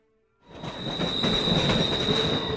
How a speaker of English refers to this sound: I awoke as the train jolted to a stop, its cylinders issuing a final sigh of steam.